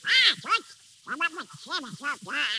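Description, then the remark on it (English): Donald Duck's cartoon voice quacks and squawks in a quick, garbled burst of about six raspy, nasal syllables, loud, with short gaps between them like unintelligible chatter. “What's that noise, Mickey? Oh, that's Donald Duck.”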